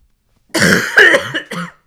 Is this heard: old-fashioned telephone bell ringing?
no